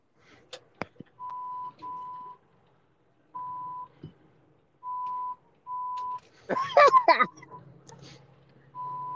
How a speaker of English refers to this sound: It was the beeping for me. It was like dead air, and then was like beep beep.